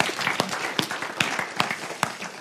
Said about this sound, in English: Come on, let's do it. If we're going to clap God, let's clap him.